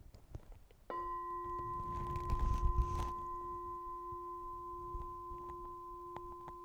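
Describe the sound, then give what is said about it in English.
A single bell strike, rung to mark the start of a 30-second listening exercise, rings out after a moment of quiet, its clear mid-pitched tone and higher overtone sustaining steadily for several seconds over faint low background noise. “And I will ring the bell at the beginning and the end of our 30 seconds.”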